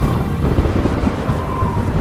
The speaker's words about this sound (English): A terrible storm raged that night, and Falky, determined to find the treasure, lay soaking in the rain and lightning